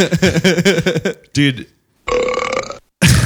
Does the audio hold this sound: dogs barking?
no